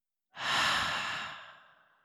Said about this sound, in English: And we're going to take a deep breath in, pause at the top, thinking of that one thing, and breathing out.